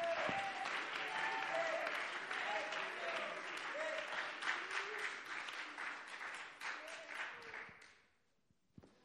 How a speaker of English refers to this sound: In Jesus' name, let's clap our hands to the Lord with all of our might.